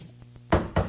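Two solid knocks on wood in quick succession, each a dull, hollow thud that fades briefly, following a moment of near quiet with a faint low hum.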